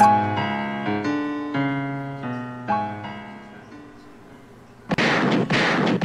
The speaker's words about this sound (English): Gunshots is going off, man, because the Knicks beat the Hawks.